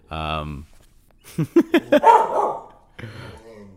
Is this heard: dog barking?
yes